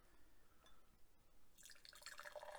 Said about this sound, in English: It's the 506 Kolsch. Excellent. Yeah, I'm going to crack that open, see what that's like. You mind pouring a little bit in my empty glass now? Oh, you want some of this? I want to try some of this Kolsch.